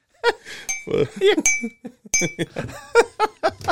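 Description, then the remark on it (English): A fork clinks lightly against dishware a few times, bright, while people chuckle and murmur in the background. “Oh, you hear the clink of a fork.”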